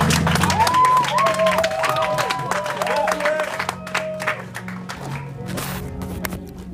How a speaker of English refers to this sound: Clap for Jesus.